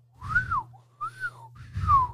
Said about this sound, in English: See, I can't even fucking whistle. I can do it went in and out.